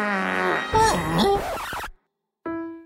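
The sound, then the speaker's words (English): A long, wobbly fart noise in a promo for the show Busy Bodies, with a buzzy tone that bends up and down in pitch, cuts off sharply, then a steadier buzzing blast starts after a short silence. “Farts can happen when you're feeling things”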